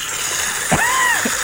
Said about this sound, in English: Listen to that. There is a massive leak I guess this is outside your house, right? Yeah, this is in my shared garden. There's a water spout that is flying up from the earth, and it must be going up 3 meters.